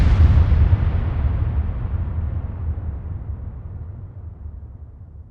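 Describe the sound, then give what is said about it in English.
A single heavy gunshot blast booms out, then a deep rolling rumble echoes and slowly fades over several seconds. No voices are present. “So George, you know, falls back asleep, and then he hears what he thinks is a gunshot.”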